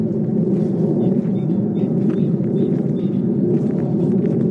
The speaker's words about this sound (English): It's another flipping jet. Probably on its way to COP26.